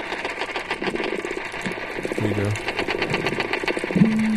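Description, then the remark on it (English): Silver perch tap in a rapid, steady buzzing rhythm underwater, mixed with faint trains of sonar clicks from a dolphin and a few low creaks like a creaking door or a fishing rod being reeled in. A voice speaks briefly over the underwater sound. “Under the tapping sound coming from the perch, you can faintly hear what sounds like that creaking door or something like a fishing rod being reeled in.”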